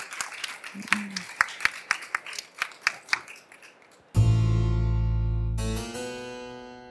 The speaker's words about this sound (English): We have an enormous round of applause. The fabulous Deborah Muller. Thank you. Thank you.